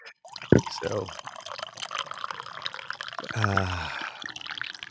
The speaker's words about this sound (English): Le morning pour. Fresh hot coffee. Get my day started right.